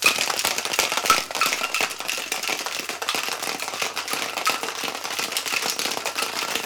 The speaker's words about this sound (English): So we want to give that a good long shake. With the 2-inch ice cube, we find that you have to shake a little longer to get the proper dilution and the proper temperature, but get a nicer consistency with that big ice cube.